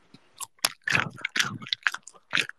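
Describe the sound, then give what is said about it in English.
Moist chewing of a pitted date, soft and sticky, with wet squishy bites repeating irregularly over a couple of seconds and no talking. “The first thing I will say about this item before I put it in my mouth and chew it, I had to take the pit out.”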